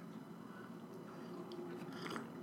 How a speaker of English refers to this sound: And so we are both drinking Brick House Coffee. I forget which brand this is specifically of it, but it is a dark roast, which I prefer in a French press. So, first sip, my friend.